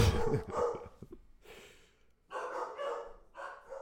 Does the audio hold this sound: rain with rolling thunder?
no